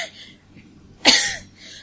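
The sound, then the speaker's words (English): A single sharp, forceful cough bursts out, a voice imitating the cough of someone going up the stairs, with quieter breathy sounds before and after. “But you start coughing as you go up the stairs.”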